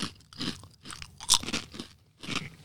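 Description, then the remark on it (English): Loud crunching of Trader Joe's ghost pepper potato chips being chewed by people, several sharp brittle bursts in an uneven rhythm with no talking. “Because us crunching is not very attractive.”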